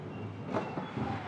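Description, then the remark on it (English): A bin lorry's heavy engine rumbles steadily at the end of a driveway while a few sharp, crashing bursts of glass bottles being collected break through, the loudest just past the middle, with smaller clatters following. “Now, either there's a dinosaur that's eating glass bottles at the end of my driveway, or the bin lorry's appeared.”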